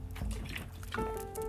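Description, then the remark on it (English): A brief sip of water: soft liquid slurping and trickling sounds, then a faint ringing tone like a bottle or glass, with no one speaking. “I'm just going to take a sip of water.”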